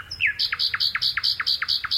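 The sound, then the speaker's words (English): A nightingale, recorded by Philip Radford in Gloucestershire, England, sings a rapid run of repeated bright, whistled notes, about eight in quick steady rhythm after an opening slur, clear with no voices present. “The British countryside is home to a vast array of creatures, but few whose song is quite as melodious as this nightingale, recorded by Philip Radford in Gloucestershire, England.”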